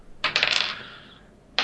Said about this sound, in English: God, my dice roll's terrible. Go again.